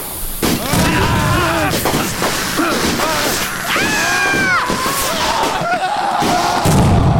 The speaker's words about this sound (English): This is the finale, and you know what that means. Fireworks. Fireworks.